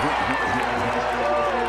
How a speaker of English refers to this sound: 48-35 as Jazz fans cheer all around the building here at the Pepsi Center.